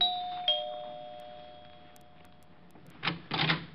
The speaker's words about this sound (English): Around about 8 o'clock, after I'd taken care of dividing the reward, I steered for 975 Park Avenue, made it with no trouble, and rang the bell to Helen's apartment.